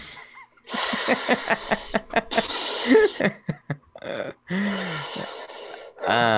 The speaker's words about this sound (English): doing his deep breathing over there. Yeah, I'm doing some like Lamaze over here, man, because I feel like I'm about to have birth, you know.